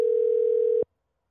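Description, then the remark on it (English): A single steady electronic phone tone, the ringing signal of an outgoing call, hums clearly for under a second and then cuts off abruptly into silence. No voices. “Answer the phone, fuckhead!”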